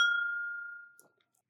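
Glasses of Scotch clink together once in a toast, leaving a bright ringing tone that slowly fades over about a second, followed by a soft low thump at the very end.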